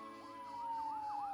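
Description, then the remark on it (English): Sirens of several fire engines roaring by wail with overlapping rising and falling tones, growing slightly louder as if drawing nearer, with a low rumble of traffic underneath and no voices. “Suddenly, they all heard sirens.”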